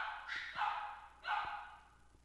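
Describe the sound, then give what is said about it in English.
Dogs bark in a few sharp, overlapping bursts, one near the start and another about a second later, moderately loud, with yips mixed in. “Dogs wildin'. Dogs are wildin'.”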